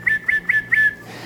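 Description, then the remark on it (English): A steady, high human whistle made with the tongue and no lips, broken by four quick, evenly spaced accented pulses before it stops. Clear, with no talking. “All right, but the interesting thing, I can whistle with my tongue, so no lips.”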